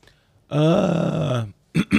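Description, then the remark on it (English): A loud, drawn-out guttural throat sound into a microphone that slides downward in pitch for about a second, then two short, sharp throat-clearing bursts after a brief pause. “Hey, why'd you clear your throat in the mic for?”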